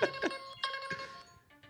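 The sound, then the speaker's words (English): A bright electronic chime plays a quick run of stacked, bell-like tones, a few sharp hits ringing out over about a second and a half, a player's buzzer for buzzing in first in a sports-stat guessing game, with no talking. “They are using buzzers. So the first one to buzzer gets to guess first.”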